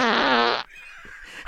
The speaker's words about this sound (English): Every listener farts. No way.